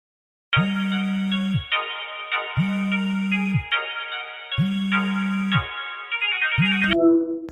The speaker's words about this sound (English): All right, it's time to answer the phone. Here we go.